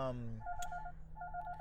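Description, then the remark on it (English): A phone rings with an incoming call inside a car: two bursts of rapid, trilling electronic tones separated by a short pause, heard over a steady low hum, with a brief voiced sound at the start. “My bad, man, I'm having a phone call right now.”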